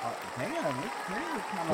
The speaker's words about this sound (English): All right. That's a cheer. That's a standing ovation right there.